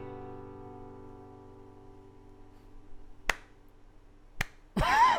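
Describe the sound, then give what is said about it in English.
A lingering musical tone fades out, then two sharp, crisp claps land about a second apart in a slow, deliberate rhythm, followed by a short burst of noise. “Slow clap.”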